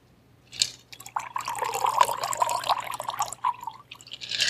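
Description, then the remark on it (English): A One in the Hand cocktail is poured into a glass in a steady, gurgling stream for a couple of seconds, with a slight ringing tone, then a short final splash. No one speaks. “So we're going to add this to our glass.”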